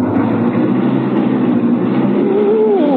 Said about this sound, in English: You've got to step on the brake. Step on the brake? To start my car?